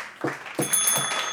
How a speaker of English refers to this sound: Knocking. Knock, knock, knocking on wood.